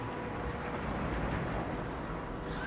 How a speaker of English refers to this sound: Oh. Classic 80s. Oh, yeah. Big explosions.